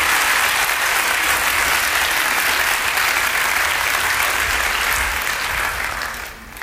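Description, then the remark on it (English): An audience of friends gives a big round of applause as gifts are presented, clapping steadily in a dense, sustained burst, loud and even throughout before thinning out and fading in the last second. “These all belong to you, along with a big round of applause from all your friends.”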